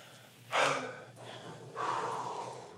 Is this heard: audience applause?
no